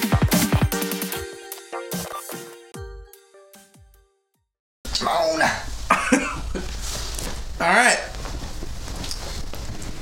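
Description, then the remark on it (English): A bright melodic chime plays and fades, then after a short silence come several loud, raspy coughs and gruff throat clearing in uneven bursts. “Frog in their throat.”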